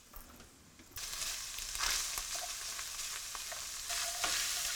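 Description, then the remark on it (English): A clove of garlic and about a tablespoon of minced ginger hit hot oil with a sudden burst of bright, steady sizzling that crackles and hisses continuously, swelling slightly louder near the end, with scattered pops and occasional stirring clicks and no talking. “Let that start heating, and a clove of garlic. Looks like that. Splash of oil to help it start on its path.”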